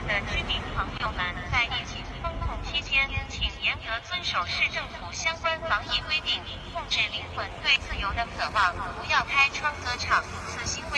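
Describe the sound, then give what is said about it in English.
A tinny, amplified voice blares instructions through a loudspeaker on a drone overhead during the COVID lockdown in Shanghai, steady and insistent over a faint mechanical hum, echoing across an otherwise quiet city. “But breaking through the silence, drone instructions.”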